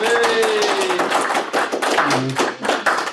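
A steady series of sharp hand claps, crisp and fairly loud, repeating in an even rhythm while a gliding tone and low humming notes sound underneath.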